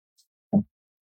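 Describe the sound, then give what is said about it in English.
A single short, muffled cough from a person who has been sick, preceded by a faint breathy hiss, then silence. No one speaks. “I've been sick the whole time, guys, so bear with me with my nasally voice and my coughing and my breathing of like...”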